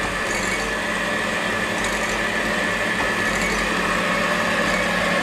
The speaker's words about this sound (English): Stop the beaters.